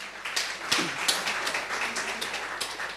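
An audience applauds steadily for a few seconds for a person who gave the closest answer to a quiz question, a dense patter of many hands clapping at once with sharper individual claps popping out. No one speaks.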